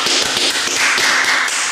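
Loud, rapid hand clapping applauding a friend's mother fills the whole stretch, sharp claps overlapping into a steady, dense patter with no voices.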